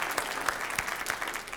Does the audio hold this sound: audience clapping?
yes